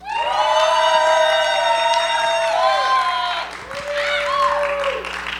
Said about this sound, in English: Yes. Listen to that enormous crowd of screaming Alfred Hitchcock fans here as we watch Rear Window.